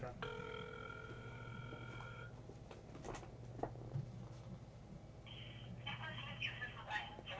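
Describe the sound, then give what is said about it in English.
A telephone ringing tone of a call placed to Brent Albright for an interview sounds in a steady electronic burst of about two seconds, then a shorter, higher tone follows a few seconds later, over a low hum and faint background murmur. “It's ringing.”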